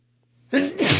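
A single loud sneeze bursts out of near silence, a short voiced intake snapping into a sharp, hissing 'choo' that ends abruptly.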